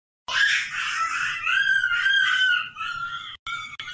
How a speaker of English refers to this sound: I'm going to mute for just a moment. I have a screeching toddler in the background.